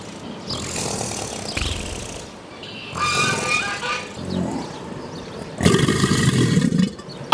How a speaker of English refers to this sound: It's an alligator.